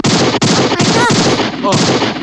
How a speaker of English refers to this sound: How did you? Oh my! You shot me. You just shot him right in the chin.